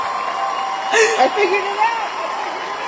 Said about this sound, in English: Clap break, y'all. Clap break. No, that's us giving it up for the 68 special, actually.